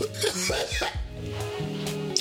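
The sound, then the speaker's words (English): A person coughs, a rough throaty burst followed by some throat clearing over a couple of seconds, with no speech. “I'm going to take your carny as a, or your coughing as a carny definite yes.”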